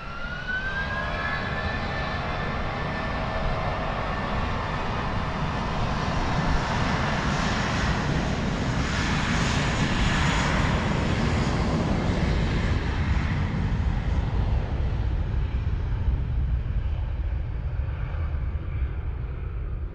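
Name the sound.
airplane taking off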